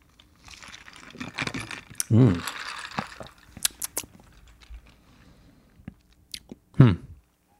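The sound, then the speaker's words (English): Quiet sipping of Fernet Viajero liquor from a glass: soft slurps and small glassy clicks and taps, with a couple of brief murmured vocal sounds in between. “On a Fernet Viajero right here. So let's go. Let's have a sip.”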